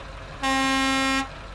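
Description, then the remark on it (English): A single loud, sustained truck horn blast lasting just under a second, rich and brassy, from a big yellow trailer truck with a smooth-fronted, European-looking cab, honked by Iron Wall in response. No talking. “Iron Wall honks in response.”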